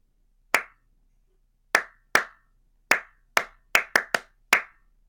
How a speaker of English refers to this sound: where they clap all of the Christmas songs, all your favorite Christmas songs, and it's just clapping.